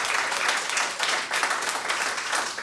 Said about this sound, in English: Yeah, big round of applause for Sam.